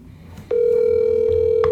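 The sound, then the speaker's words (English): A steady, mid-pitched phone tone, heard as a call is placed again after the line dropped, begins abruptly and holds at an even loudness, with a couple of faint clicks near the end and low background rumble underneath. “He dropped off again. I'm calling him again.”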